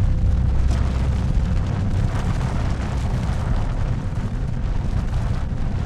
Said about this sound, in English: As a 5-second rupture on a tiny fault reverberated around Christchurch, that 1,500-year shaking was brought to bear.